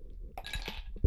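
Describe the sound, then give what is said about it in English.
Glassware clinks and a drink splashes into a glass for about half a second, bright and ringing, followed by a soft low thump as something is set down. “Will you make me another drink since you're closest?”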